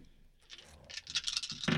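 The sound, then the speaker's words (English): Dice clatter and tumble across a hard surface for a dexterity roll in a quick run of bright, clicking rattles that builds and ends in a louder scrape, with no voices. “Oh, sorry, it's a dice.”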